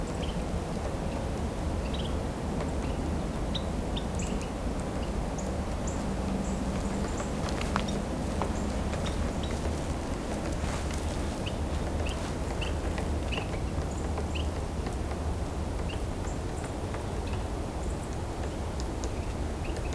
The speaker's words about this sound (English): Dark-eyed junco.